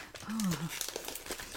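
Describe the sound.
Red, stripy wrapping paper crinkles and rustles in a steady run of crisp crackles as a present is unwrapped, with a short murmured voice sound early on.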